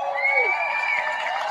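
crowd, crowd cheering at rally

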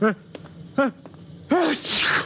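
human body sound, sneeze

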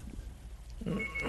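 signal or alarm, phone ringing

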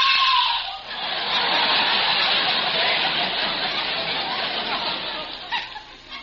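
sound effect, woman screaming

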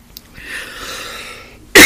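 human body sound, person coughing

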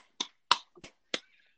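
human body sound, hand clapping

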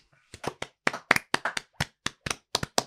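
crowd, people clapping hands

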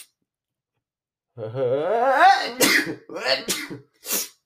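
human body sound, sneeze

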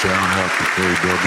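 crowd, applause

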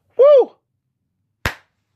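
crowd, loud applause

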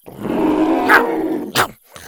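sound effect, dinosaur growling

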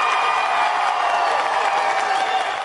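crowd, crowd applause and cheering

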